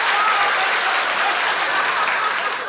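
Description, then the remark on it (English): A crowd claps steadily at a show after a performer waves the audience to applaud a joke, a dense, even roar of many hands that holds at the same fairly loud level for about three seconds without any voices breaking through. “Don't wave the audience to applaud for you.”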